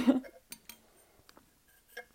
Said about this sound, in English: Sipping water. Sorry. If it sounds like ASMR, that's going to make me uncomfortable.